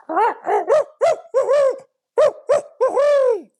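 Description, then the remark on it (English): A person imitates a barred owl with their voice as a locator call: a rhythmic series of loud hooting notes, then a pause and another run ending in a long, drawn-out descending hoot. “So an owl, I just use my voice for an owl. And just to make it sound like a barred owl or something like that.”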